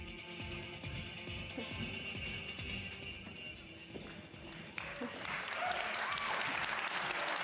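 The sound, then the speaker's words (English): Audience applause at the PC Gaming Show: a steady wash of many hands clapping, building and growing louder and denser toward the end, with a few scattered voices under the clapping. “Thanks for the warm applause.”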